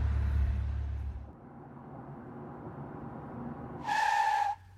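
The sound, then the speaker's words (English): A car drives home along the road with a deep engine rumble that settles into steady road noise, then a short, sharp tire screech rises near the end and cuts off. “I decided to make the drive home, in the hope my mind would unlock and find the solution we must have missed.”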